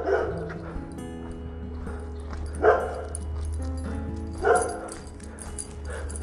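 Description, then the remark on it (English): A dog barks in short bursts, a couple of sharp woofs spaced a few seconds apart, over a steady low hum in the background; it is one of two barky dogs kept at a large house called Casa Los Naranjos. “Anyway, he's got two really barky dogs. And you can hear one of them right now.”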